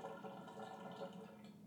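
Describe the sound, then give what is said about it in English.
A dishwasher runs with a steady, low, watery swishing and faint dripping, continuous and even in level, with no voices over it. “can you hear the dishwasher there?”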